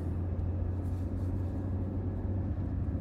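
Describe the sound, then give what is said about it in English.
A steady low engine rumble drones continuously inside a moving car, with a constant hum and no voices or distinct events over the three seconds. “Stop the car. Drop me off here.”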